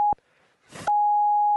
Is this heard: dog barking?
no